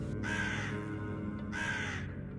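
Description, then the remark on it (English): A crow caws twice from trees high above a graveside, each call a long, harsh, raspy squawk separated by a short pause, loud over a steady background hum, with no one speaking. “At my sister's graveside, I remember feeling that overwhelming sense of numbness, and in the midst of so much emotional turmoil and confusion, I could feel the crow's presence looming over my sister's graveside from the trees high above.”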